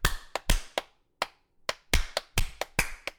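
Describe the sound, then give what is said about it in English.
Sharp, bright hand claps in series of three repeat about a dozen times in loose, slightly uneven clusters with brief pauses between them, as two people clap along together while testing remote recording. There is no talking. “I can hear you clapping at the same time as me.”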